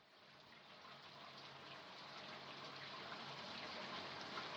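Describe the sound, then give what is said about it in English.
A shower with a high-pressure, high-flow shower head runs hard and steady, a dense hissing spray of water that swells slightly louder over a few seconds. No voices are heard. “This shower head is apparently loaded for bear. I guess this dimension hasn't figured out low-flow shower heads yet”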